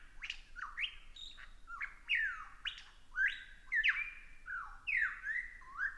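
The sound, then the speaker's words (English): A superb lyrebird sings in a dense, tangled forest near the southeastern corner of Australia, pouring out loud, varied phrases of sweeping whistles, rapid chirps and slurred notes in quick succession, with no other sounds competing. “I've come upon a bird unabashedly, and I would say appropriately, named the superb lyrebird.”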